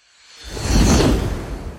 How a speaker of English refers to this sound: We'll be right back with the answers after the whoosh.